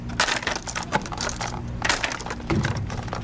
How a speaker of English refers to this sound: At the ATCC Cell Library in Rockville, Maryland, a worker is counting out tiny glass vials, packaging them up for sale. Little pieces of the living world, and ever more frequently, little pieces of ourselves.